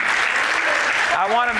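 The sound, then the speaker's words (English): About half of an audience claps steadily in response to a speaker, a dense wash of many hands that fills the whole clip, with a voice starting to speak over the applause near the end. “I'm getting like half the house clapping, the rest of you kind of looking at me like, what did he just say?”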